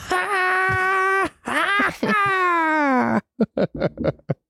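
A person wails loudly into the mic in three long, strained, quavering cries, rising and falling in pitch, then breaks into a quick run of short, choppy vocal yelps.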